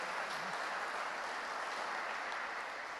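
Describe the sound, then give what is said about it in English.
A church crowd gives a big round of applause for a missionary, clapping steadily for the full three seconds, a dense, even wash of many hands with no pauses and no voices on top. “Can we just give Kieron a big round of applause?”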